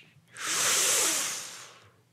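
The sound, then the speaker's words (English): A voice imitates the ocean with one long, breathy hiss that swells up and then slowly fades, like a wave washing in and retreating. It is moderately loud, with no talking. “I could do some ocean sounds.”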